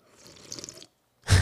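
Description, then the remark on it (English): Someone slurps soup with a wet, fluttering sucking noise for under a second, then a short silence before a sudden loud, rough burst of sound cuts in at the end. “While we play that, do you like people to eat soup like that?”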